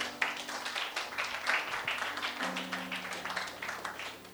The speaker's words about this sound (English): I think this is a place you should clap your hands.